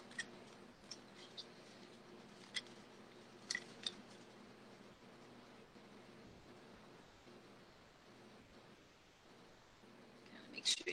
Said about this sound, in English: Apologize for the squeaky toy.